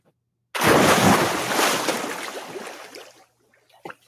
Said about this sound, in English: Cannonball. Someone jumping into water. Something jumping into water. Splashing water. Splashing. Very good. Jumping into a pool.